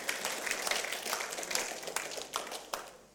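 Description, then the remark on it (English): A crowd claps together in a steady, dense patter of many hands, moderately soft and continuous throughout, with a few sharper individual claps standing out near the end. “Yeah, come on, if we're going to do it, let's not do the golf hand clap.”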